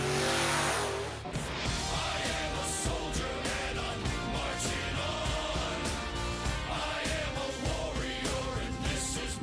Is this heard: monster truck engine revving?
yes